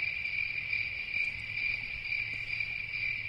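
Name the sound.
crickets chirping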